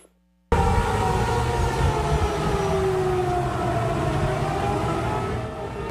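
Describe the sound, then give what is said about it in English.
A tornado warning siren near downtown Nashville wails loudly and steadily as storms move through Middle Tennessee, after a brief moment of silence, its tone slowly sliding in pitch over a rough, rumbling wash of noise, with no voices. “Sounded like earlier this evening from near downtown Nashville as storms move through Middle Tennessee, the sound there of tornado sirens.”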